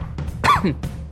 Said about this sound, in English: Oh, that is such cute coughing. Oh, adorable cougher.